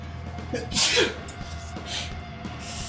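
a person sneezing

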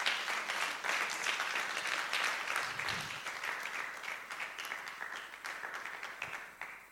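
audience clapping

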